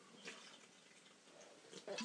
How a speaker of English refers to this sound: Just taking a little bit of water here. Oh man, oh man.